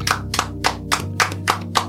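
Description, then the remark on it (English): Steady rhythmic hand claps for a guest at the end of a live radio show, about seven sharp bursts in under two seconds, ring out over a low sustained tone, with no voices. “Let's clap it up one more time before we get out of here.”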